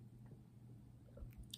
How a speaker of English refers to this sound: Sorry, I was like gulping down liquid chocolate. That's the thing is, like, this chocolate is so good,